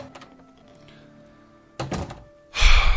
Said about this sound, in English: Thank Christ, I got that door open. Thank you, Jesus.